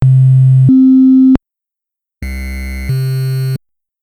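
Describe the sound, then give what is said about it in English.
A sine-wave tone from an FDS sound chip steps between two notes, then after a short pause, the same two-note pattern returns on a Game Boy wavetable, noticeably buzzier and rougher. “We have an example of the sine wave being played back on FDS, followed by the sine wave being played back on Game Boy, and you can easily hear how it comes out a lot rougher on the Game Boy.”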